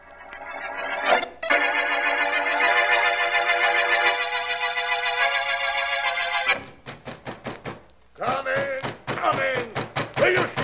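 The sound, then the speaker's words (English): Sustained musical chords give way to a quick run of sharp knocks on a door at night, loud, followed by a person starting to speak. “On that door at this hour of the night? Hurry, please, hurry.”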